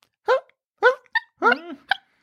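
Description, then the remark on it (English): A voice imitates a female dog's muffled, hiccup-like barks in her sleep: five short, soft yips at uneven intervals, one slightly longer and wavering, fairly quiet with nothing else around them. “when she's barking in her sleep, makes sounds that are like hiccups.”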